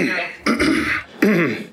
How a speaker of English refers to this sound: Yeah, that's a nervous cough. That's an in-season cough, I call it.